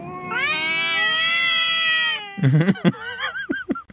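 A cat lets out a long, drawn-out yowl for about two seconds, followed by a quick series of shorter, wavering meows and cries, fairly loud.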